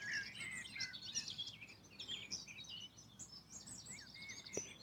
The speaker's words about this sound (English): Birds are in full effect. Sun's out. Everything's green.